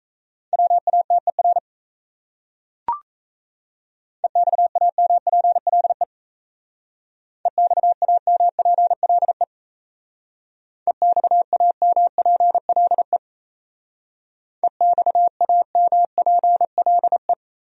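Fast Morse code at 28 words per minute: a steady mid-pitched tone keyed into rapid dots and dashes, sent in five separate bursts with short pauses between, plus a brief click early on. No voices.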